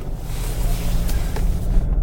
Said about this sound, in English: I'm in my sand car, so it's going to sound a bit different.